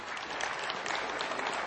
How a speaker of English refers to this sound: Was that amazing? Give them an applause. They need that.